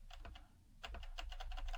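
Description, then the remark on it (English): Rapid, uneven tapping on the buttons of a phone that won't work: a burst of sharp plastic clicks, a brief pause, then a quicker flurry of presses over a low steady hum, with no voices. “I'm banging away on the phone here, and it won't work.”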